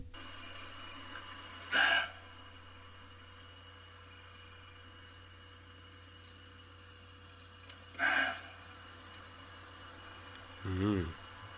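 A roe deer buck gives three short, hoarse barks, widely and unevenly spaced, each a single harsh, dog-like yelp standing out from a quiet background with a faint low hum.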